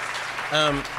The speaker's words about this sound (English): Yes, clap. Yeah. Good thing about having a live audience.